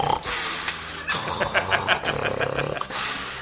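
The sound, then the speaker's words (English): A person mimics a man snoring: loud, raspy breathy snorts with a rapid fluttering rattle in the middle, then a final hissing exhale. No one speaks. “That's how he snores.”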